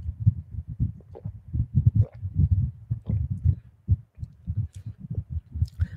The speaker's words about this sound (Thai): ดื่มน้ำสักนิดหนึ่งครับ